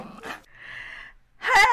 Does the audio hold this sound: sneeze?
no